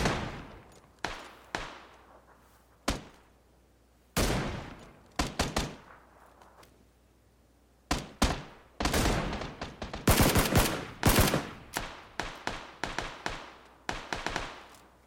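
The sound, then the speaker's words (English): Repeated gunshots crack out to the north in irregular bursts, some single and some in rapid clusters, sounding somewhat distant with a faint echoing tail and a low background hum. “There's more gunfire to our north, it sounds like.”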